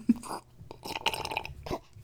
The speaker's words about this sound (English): And so we're just like really close. Just slurping coffee like.